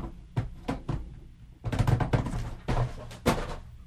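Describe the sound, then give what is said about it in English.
A few dull thumps, then a louder burst of knocking and clattering as a summer sausage called Bushwick is knocked over, with a couple of final heavy thuds. No one speaks. “You just knocked over Bushwick. Your summer sausage.”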